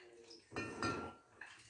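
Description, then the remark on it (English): A drinking glass of rum punch rattles in a short, busy burst of clinks and jingles lasting under a second, with quieter clattering before and after and faint voices in the background. “I know it tastes good when you start rattling that glass.”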